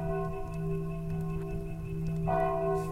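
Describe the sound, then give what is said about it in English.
A large bell chimes the hour in Caraway, ringing out with a long, humming resonance that lingers throughout, and a fresh strike lands near the end. The chime is moderately loud, with no voices. “The hour chimes of Caraway, struck by the queen herself, they say.”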